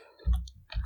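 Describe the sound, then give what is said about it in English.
A brief clatter of three dice tumbling across a table, a quick burst of hard clicks over dull thumps, with no voices. “I can roll you 3 dice.”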